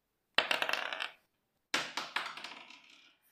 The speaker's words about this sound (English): In fact, I was able to track down the percent liar table, and I thought I might give it a go here. So I'm just gonna give the dice a roll.